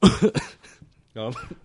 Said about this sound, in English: I need a mute button for this. Coughing.